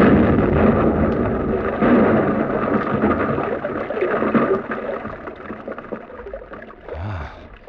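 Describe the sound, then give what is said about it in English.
An explosive charge detonates in a mine tunnel, set off by pressing the handle of a wired exploder: a deep roaring rumble that rolls on steadily for several seconds before a final low surge near the end. No voices. “The two men disappeared up the gallery, and I was left alone to explode the charge.”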